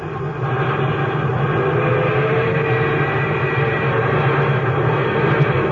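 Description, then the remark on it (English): The Milwaukee Railroad's new streamlined locomotive, the orange and silver Hiawatha on the Chicago to Minneapolis run, roars past in a steady, loud rush of noise with a deep rumbling undertone and faint whining tones, holding constant for several seconds with no voices. “There goes the Milwaukee Railroad's new great streamlined locomotive.”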